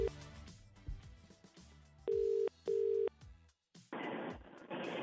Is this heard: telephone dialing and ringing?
yes